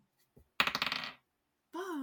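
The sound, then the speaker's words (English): A die rolled for an insight check in a tabletop role-playing game clatters across a hard surface in a quick burst of bright, rattling clicks that bounce and settle within about half a second, landing on a 10, followed shortly by a voice starting to speak. “Can I roll an insight check to see if Fair lying?”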